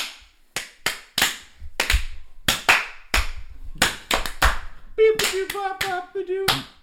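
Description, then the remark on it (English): A few people clap in loud, uneven bursts of sharp hand claps, a dozen or more, with a high, tonal vocal whoop rising among the last few claps. “Maybe just, like, clap it in. Yeah, let's clap.”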